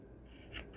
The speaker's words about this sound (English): And little scissors. And, closer. Okay, just trimming. Trimming.